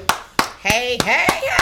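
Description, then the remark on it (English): Six sharp hand claps in a steady, even rhythm, about three per second, with a voice vocalizing sliding, pitched sounds underneath the later claps. “So I learned that's how you're supposed to clap on podcasts.”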